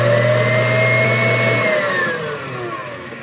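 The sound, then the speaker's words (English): An electric mixer whirs steadily as it whips egg whites and sugar hard toward stiff peaks, a loud, even motor whine that drops in pitch and winds down toward the end. No one speaks. “We like to whip these fairly hard.”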